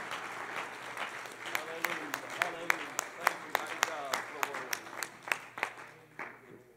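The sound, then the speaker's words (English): A church audience breaks into hand clapping in praise of the Lord, a dense patter of many claps with sharper individual hits standing out, swelling and then tapering off over several seconds, with a low murmur of voices underneath. “Can you give the Lord one more hand clap of praise before you're seated?”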